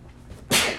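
sneeze

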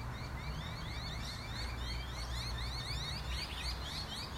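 birds singing outside

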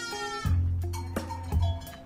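goats bleating

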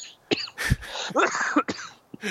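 coughing

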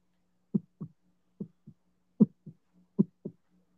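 heartbeat sound effect

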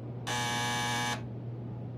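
doorbell ringing

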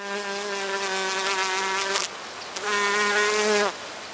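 buzzing bee sound effect

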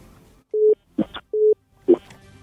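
telephone busy tone

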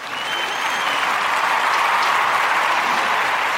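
crowd cheering and applauding

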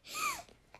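sneeze

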